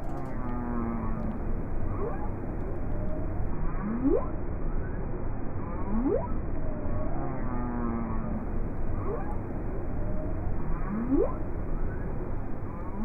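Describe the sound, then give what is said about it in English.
Humpback whale song with repeating low moans and rising upward whoops, several calls in a slow cycle over a steady underwater hiss; no voices. “So that was a humpback whale, right?”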